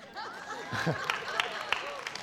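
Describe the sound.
Scattered applause from an audience reacting to a device-free camp policy, a few sharp claps standing out over a murmuring crowd with some laughter and overlapping voices, not very loud.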